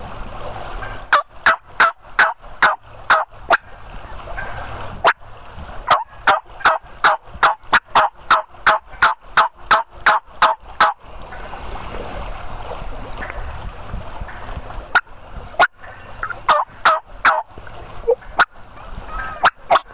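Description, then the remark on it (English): Wild turkey hens call in rapid, repeated yelps, a steady series of sharp notes in bursts with brief pauses, loud over a soft outdoor background with no talking. “As bossy as this one is, you'd think all the other hens would be coming in here to see what was about to happen.”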